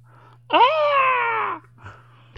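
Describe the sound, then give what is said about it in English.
A voice imitates the scream of the film character Noxzema going up into the attic: one loud, drawn-out wail lasting about a second, starting high and sliding gradually downward in pitch, with a steady low hum running underneath throughout. “Until Noxzema goes up into the attic and screams!”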